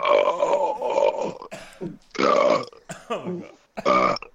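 A man lets out a series of loud, drawn-out belches, four or five in a row with brief pauses between them, with no talking.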